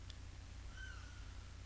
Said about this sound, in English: I wonder if anyone could hear that bird.